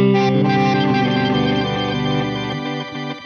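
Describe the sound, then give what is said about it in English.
A guitar heavily processed through the Crystals pitch-shift effect of an H9 effects unit, with shimmering, pitch-shifted harmonics and reverse-like echoes, a dense sustained wash of layered tones that stays loud and thick before thinning slightly near the end. “the old crystals, classic H9 crystals.”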